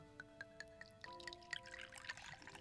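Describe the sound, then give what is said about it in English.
A drink is poured into a glass after a few light, evenly spaced clinks, the liquid splashing and gurgling steadily for over a second. Quiet, with no voices. “Now pour me another.”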